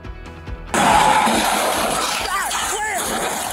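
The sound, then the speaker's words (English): A low engine rumble gives way to a sudden, loud crash as a car catapults off the back of a tow truck and slams down, followed by a sustained roar of noise and clattering, with faint voices in the background. “An actual car, as you see it there, sort of catapulting itself off the back of a tow truck.”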